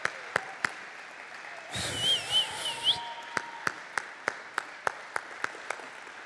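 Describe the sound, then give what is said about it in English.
A Presbyterian church audience applauds in thanks with sparse, evenly spaced hand claps, interrupted midway by a short, noisy swell of crowd sound with a wavering whistle-like tone before the steady clapping resumes. “We're Presbyterians and we can clap.”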